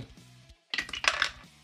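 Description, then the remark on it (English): A different set of dice clatters across a hard tabletop, rolled for a character's attack in a tabletop game, a quick burst of bright rattling clicks and bounces that settles within about half a second, preceded by a soft low rumble and a brief silence. “I remember to use different dice for this one.”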